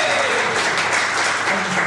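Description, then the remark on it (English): A crowd at the MGPX event in Peterborough bursts into sustained applause and cheering on request, a dense, loud wash of clapping hands and shouting voices that holds steady for about two seconds. “So if we can have a proper cheer, a proper round of applause, that's more like it.”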